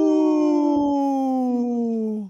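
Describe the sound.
A person imitates a wolf howl: one loud, sustained tone about two seconds long that slowly slides downward in pitch before cutting off, with no other voices.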